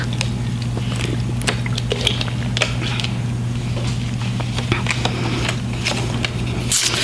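Someone drinks water: a scattering of soft, wet mouth clicks, sips and swallows, irregular and fairly quiet, over a steady low electrical hum, with no talking.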